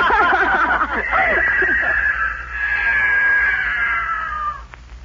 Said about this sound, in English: The mountain lion, he's going into the woods.